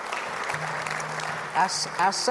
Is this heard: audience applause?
yes